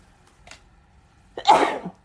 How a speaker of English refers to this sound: Oh, that's my morning sneeze. Pardon me, y'all.